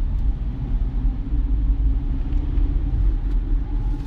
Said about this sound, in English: Mainly because I'm sitting in traffic right now, and doing stuff like this keeps me awake, keeps me alert.